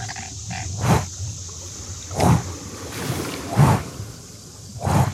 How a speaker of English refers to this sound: the flapping of large wings... and you look up and you see this creature, body of a lion, bat-like wings, and a scorpion tail.